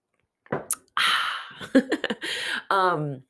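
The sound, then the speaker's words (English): A few short, noisy slurping sips of hot coffee on a Friday morning, with brief breaths in between, ending in a voiced, satisfied 'ahh' that falls in pitch. “I'm having my coffee, so I'm going to take a little coffee sip.”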